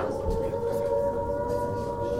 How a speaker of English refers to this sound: Oh, dear, what's that? Air raid sirens. But they're a long way away.